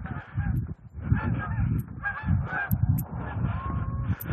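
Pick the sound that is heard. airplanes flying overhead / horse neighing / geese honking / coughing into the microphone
geese honking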